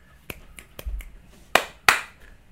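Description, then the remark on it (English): Fingers snap: three light, quick snaps, then a pause and two sharp, much louder snaps in succession, with no voices. “Give it a few snaps at the beginning there, just to get a couple snaps.”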